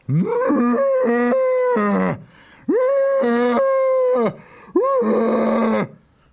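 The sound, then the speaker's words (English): An elephant bellows three times in a row, each call long, loud and brassy, with brief pauses between them and no other sounds around. “For its part, the elephant let out three tremendous bellows.”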